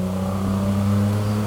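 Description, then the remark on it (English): A red Datsun 240Z rally car with a blue bonnet roars loudly, its engine holding a steady, throaty low drone with strong harmonics for the whole moment, with no voices over it. “240, is it, JP? Yeah, 240Z.”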